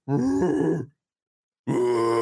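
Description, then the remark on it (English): A person imitates a grizzly bear with two deep, rough growling bursts, the first longer and wavering, then a pause before a second sustained growl. Loud, with no speech. “Everybody that's in the comments right now, type your phonetic pronunciation of a grizzly bear.”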